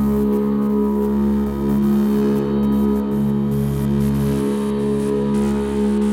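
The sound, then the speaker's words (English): A steady, gritty drone hums continuously, its layered tones smeared by heavy delay from a Carbon Copy delay pedal and reverb into a smooth, washy wall of sound with no voices. “But it's also kind of smooth with all the delay and reverb that it's kind of drenched in.”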